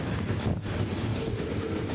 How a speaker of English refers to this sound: So what's coming through now is a trash train. I can smell the trash. It's in containers. The word is that this trash comes from New Jersey.